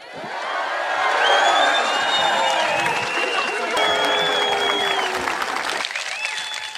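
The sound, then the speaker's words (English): A large outdoor crowd at a Scottish independence rally bursts into sustained applause and cheering for Believe in Scotland's new youth wing, with whistles and whoops rising over dense clapping that holds steady for several seconds before beginning to ease. “So I want you to give the biggest cheer of the day for Believe in Scotland's brand new youth wing.”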